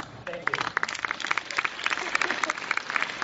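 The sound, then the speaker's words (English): An audience applauds steadily, with dense overlapping claps at a fairly even level throughout, the crisp slaps forming a continuous patter with a few sharper individual claps standing out. “I was very happy that people applauded that last part because I thought somebody was going to boo or something.”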